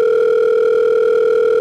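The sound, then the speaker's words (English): A steady telephone dial tone hums continuously and loudly while a phone call is being made, with no voices over it. “you're making the phone call to Art Life?”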